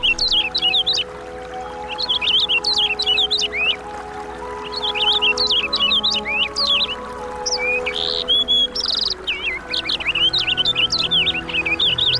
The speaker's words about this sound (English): The purple finch, this week's featured feathered friend, here on Talkin' Birds.